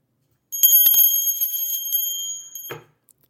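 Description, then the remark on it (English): A small desk bell is struck, its bright metallic ring sustaining clearly for about two seconds before being damped, with no talking. “I still keep that bell at my desk as a monument to Anne's care for me in my darkest hours, and I even ring it occasionally”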